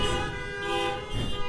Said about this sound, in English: All those in favor, if you're here, say aye. If you got a horn, honk it.